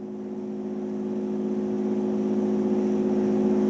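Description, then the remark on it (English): An X-Wing starfighter fly-by: a steady, humming engine whir with strong low tones that swells gradually louder as it approaches, heard alone without any talking. “X-Wing coming by.”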